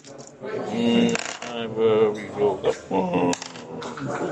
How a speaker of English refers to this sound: That is 4, 5, 6, 7. You can't roll more than 5 dice for anything. No. Why do you think I stop at 5?